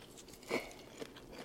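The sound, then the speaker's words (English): Quiet, crisp chewing of home-grown arugula salad with a citrusy dressing, eaten from wooden bowls, with a soft crunchy bite about a third of the way in and a smaller crunch after it, no talking. “The dressing is so good. It's everything you promised. It's citrusy. It's super fresh. I feel good when I'm eating it.”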